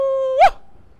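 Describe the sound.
A person biking fast in New York lets out a short, loud wolf-like howl: one steady held note that swoops upward and cuts off abruptly, a voice imitating an animal howl, followed by quiet.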